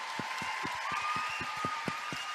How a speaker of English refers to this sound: Come up here. Here they are. Let's applaud them to the stage.